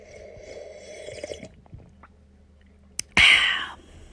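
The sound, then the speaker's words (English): A short, loud slurping sip of coffee taken to check microphone levels, after a small click and a few seconds of quiet mouth noise and soft rustling. No one speaks. “I tend to check mic levels using, the tried and true coffee sip.”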